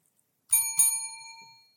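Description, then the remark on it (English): A bicycle bell rings twice in quick succession, bright metallic strikes, its clear tone ringing out and fading over about a second with no talking. “Don't hate on my bell.”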